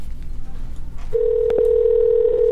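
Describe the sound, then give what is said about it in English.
A steady electronic outgoing Skype call ringing tone switches on after about a second of low background hiss and holds at an even pitch to the end, with a couple of faint clicks partway through. “Let's see if we can get them on the phone here. Yeah, just like we'll call them on Skype.”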